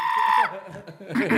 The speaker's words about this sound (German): Das schrille Kreischen ist ein normaler Entwicklungsschritt bei der Stimmentwicklung.